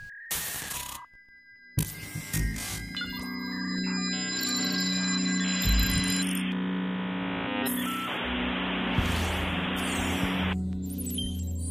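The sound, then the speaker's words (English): A telephone rings while a call is placed: steady electronic tones and beeps that build into a dense, loud wash of buzzing noise over a low hum, with no talking. “So let's boot that... that phone up and have a chat.”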